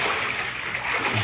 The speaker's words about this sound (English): Oh, I'm terrible. I splashed the pool and see if I spent much time in it.